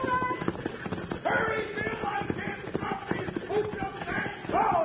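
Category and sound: animal, horse hooves galloping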